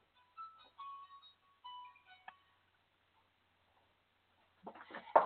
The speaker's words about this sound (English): My phone's going off. Hold on for a second. Let me take it out of this real quick.